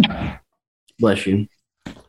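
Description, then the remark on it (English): A sneeze caused by pollen bursts out, a breathy rush breaking into a sharp voiced explosion, with short noisy breaths just before and after. “Bless you.”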